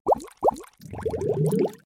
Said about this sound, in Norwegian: Så da kjører vi jingle.